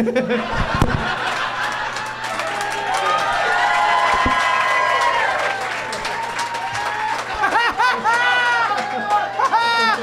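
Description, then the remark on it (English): A crowd erupts in loud applause mixed with whoops and excited cheering, sustained for several seconds with scattered shouts and laughter rising over the clapping. “When I get one thing right, the audience goes crazy.”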